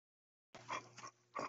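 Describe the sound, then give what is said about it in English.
An excited male dog lets out a few short whining grunts in quick succession, three breathy bursts over a faint low hum, with no one talking. “we haven't asked the dogs what they think about failing forward”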